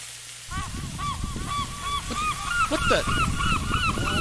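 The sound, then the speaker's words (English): A flock of birds calls loudly near a grill where steak is being cooked, hundreds of miles inland, a dense chorus of overlapping honking cries that bursts in after a brief quiet moment and keeps going without pause. “Where did birds come from?”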